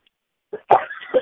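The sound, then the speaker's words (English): A single cough follows a brief throaty catch, then trails into rough throat clearing that rasps on for about half a second, loud against otherwise silent surroundings. “Hang on, I got a cough.”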